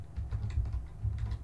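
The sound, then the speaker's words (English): Rapid, irregular clicking of keys on a computer keyboard, fairly quiet, with a steady low hum underneath and no voices. “I'm typing here, but you can feel free to keep reading.”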